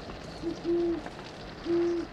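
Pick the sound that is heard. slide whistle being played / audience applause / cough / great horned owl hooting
great horned owl hooting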